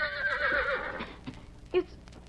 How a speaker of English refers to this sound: But today, as he entered between the rocks, he heard a different sound. It was the whinny of a horse.